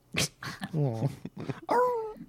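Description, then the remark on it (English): A dog growls and grumbles in a few short, rising-and-falling bursts, with brief gaps between them and no one talking. “You can mute your dog?”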